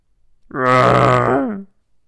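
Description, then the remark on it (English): Chewie the Wookiee growls a greeting as he enters the room with Han: one loud, rich, throaty roar lasting about a second, holding steady before sliding down in pitch at the end. No one speaks. “The Wookiee growls a greeting.”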